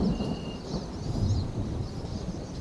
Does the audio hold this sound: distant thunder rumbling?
yes